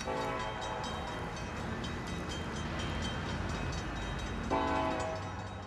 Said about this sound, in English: I remember being relieved when I opened the window at night and heard the sound of the trains passing by in the distance.